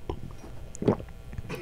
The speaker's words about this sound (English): What did it sound like? It sounded like a gulp. It kind of sounded normal. Yeah, it sounded very standard.